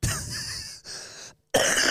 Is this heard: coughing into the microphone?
yes